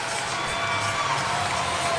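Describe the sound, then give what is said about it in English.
A home crowd of Belmont Braves fans cheers steadily during a TV timeout in a volleyball match against Brebeuf, a dense wash of shouting and whooping voices that fills the space at a fairly loud level for the whole stretch, with no individual words standing out. “Belmont's crowd's trying to get behind their team.”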